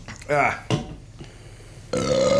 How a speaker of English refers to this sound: Okay. Is this what we're doing? Yeah, we're basically burping into a microphone.